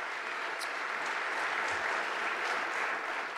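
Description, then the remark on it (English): Steady applause from a large audience appreciating guests, a dense wash of clapping that holds at an even, fairly loud level throughout with no voices standing out. “Can we give them one more very welcome round of applause and appreciate them?”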